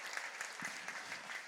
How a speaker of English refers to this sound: So I want to thank you for being here and just give yourself a cheer for making the effort to be with us this morning.